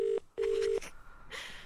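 Two electronic keypad tones from a phone being dialed to call someone, a short beep followed by a longer one, clear, then a soft hiss of line noise.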